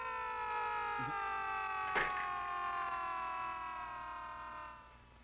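A steady, droning air raid siren wails with several layered tones, pitch sagging slowly downward before it fades out near the end; a brief click sounds partway through, and nobody speaks.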